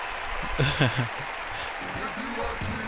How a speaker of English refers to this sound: Ooh, I like how it sounds like demons are singing. And it's a little slowed down.